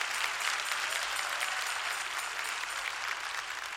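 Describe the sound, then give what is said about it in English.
A church audience claps together in praise of God in a steady, dense wash of applause lasting a few seconds, many hands overlapping into an even, sustained patter with no voices. “If you're glad about it, clap your hands and praise God.”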